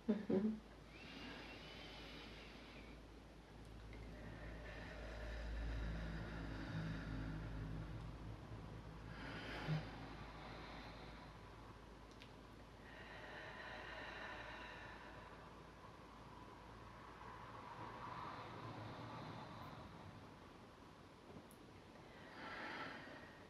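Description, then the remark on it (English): Several slow, deep breaths drawn in and let out, each a soft airy rush lasting a few seconds, repeating at an unhurried pace over a low, steady rumble with no talking. “And so, yeah, how we usually start, if you can just take a few deep breaths in and out.”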